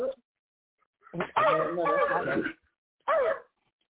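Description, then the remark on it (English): A person imitates a dog barking with their voice: a long, drawn-out yelping bark followed after a short pause by one brief bark, loud. “Buck like a dog.”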